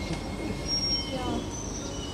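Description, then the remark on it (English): A subway train heading to City Hall rumbles steadily along the rails, a loud continuous roar with thin high-pitched wheel whines drifting over it. “City Hall opens at the right side, so we don't need to change. We don't need to change trains.”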